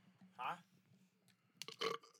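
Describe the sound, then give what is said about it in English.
A single short burp, followed a moment later by a brief, noisy vocal burst. “I just hit my glasses on this, and then I burped, and it was gross.”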